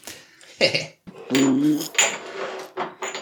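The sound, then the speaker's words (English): Glasses clink and clatter as they are moved about and shots are poured, in several short, bright bursts with a brief ringing tone, interrupted by a rougher, sustained rattle in the middle. No one speaks. “Man, all these sounds going on. Moving glasses. Pouring shots.”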